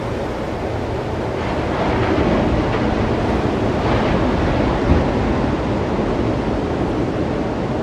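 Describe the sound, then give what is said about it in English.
Ocean waves surge and roll back in a steady, broad wash of surf, loud, with a gentle swell in intensity midway and some wind noise, no voices. “The exhale of the ocean is the waves crashing up. And as the waves roll back down, it's an inhale.”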